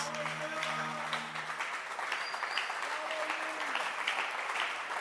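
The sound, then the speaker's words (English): A church audience claps their hands steadily, a dense, continuous patter of many hands at a fairly even loudness throughout, with a brief low tone underneath at the start. “Clap your hands.”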